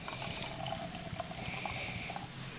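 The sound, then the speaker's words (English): Freshly canned Santilli beer pours steadily into a Smuttynose balloon glass, a continuous gurgle and fizz of liquid lasting a few seconds, with no one speaking. “We're pouring these into our smutty nose balloon glasses.”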